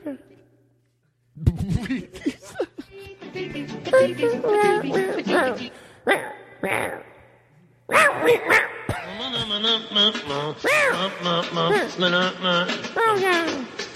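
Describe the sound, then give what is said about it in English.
A cat makes a run of warbling, talk-like meows and yowls, rising and falling in pitch, in two loud bursts separated by a brief pause. “No, seriously, cat, what are you saying?”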